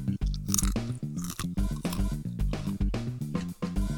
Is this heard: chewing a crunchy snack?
yes